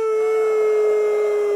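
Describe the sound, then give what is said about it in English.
A crowd of people imitates a wolf howl together, holding one loud, sustained, steady-pitched note for a second and a half with no talking. “He said he felt like a wolf rising to howl at the moon. Come on, give me your best howl.”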